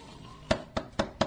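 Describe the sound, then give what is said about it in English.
Four sharp knocks on a door in a quick, even rhythm, each a short hollow thud, moderately loud, with quiet background and no talking. “Hey, someone's at the door. Get up and answer it.”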